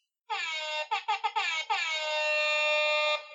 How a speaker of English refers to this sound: Frank, you got that air horn?